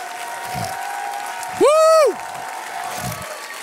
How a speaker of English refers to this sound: Matter of fact, if you believe that, I want you to stand to your feet and I want us to give an ovation to God that he's worthy of. Hallelujah.